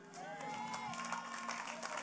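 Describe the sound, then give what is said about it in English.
An audience claps for Jesus and cheers steadily, a dense wash of applause with raised voices and whoops rising over it, holding at an even, lively level throughout. “Oh, that's a good time to clap for Jesus.”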